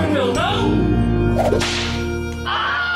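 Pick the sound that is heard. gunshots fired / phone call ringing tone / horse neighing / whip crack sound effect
whip crack sound effect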